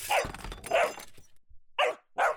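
puppy barking

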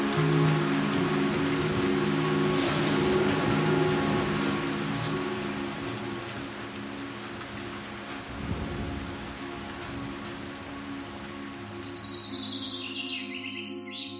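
storm with heavy rain

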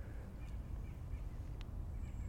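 white-breasted nuthatch calls

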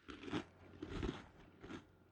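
crunching

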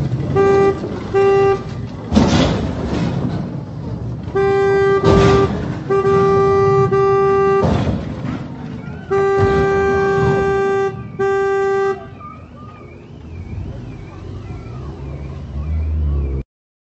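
car horn honking repeatedly

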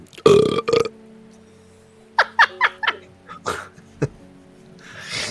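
burp

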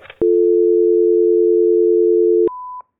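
telephone line tone

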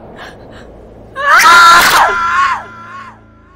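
woman screaming in terror

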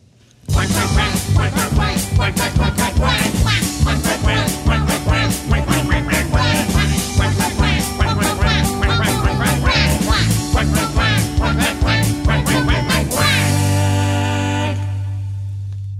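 duck quacking

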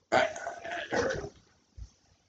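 dog whimpering and barking

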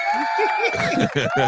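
applause sound effect

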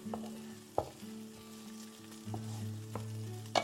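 onion sizzling

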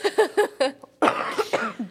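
cough into the microphone

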